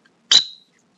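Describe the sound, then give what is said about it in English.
A single short, sharp chirp on a dog whistle, used on a calm day to stop a retriever swimming on a water blind at 100 yards: a quick breathy attack settling into a bright, high-pitched tone that fades within half a second, alone against silence. “For example, on a calm day to stop a retriever swimming on a water blind at 100 yards, I might use a chirp.”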